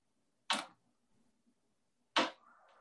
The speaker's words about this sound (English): And opening up with the water sound.